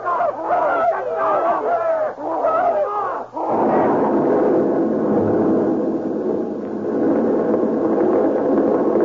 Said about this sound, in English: Proceed immediately to street in front of Baltimore Experimental Laboratories. There has been a big explosion on sidewalk, blowing taxicab and two or more persons to pieces.